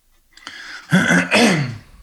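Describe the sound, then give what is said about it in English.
A person clears their throat in two harsh, rasping bursts, preceded by a faint intake of breath, with no talking. “you please go get a cough drop? Got one going right now.”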